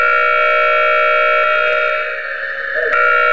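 A loud, continuous space shuttle warning alarm blares with steady high harmonic tones, shifting slightly in pitch near the end with a brief sharp blip, and no voices.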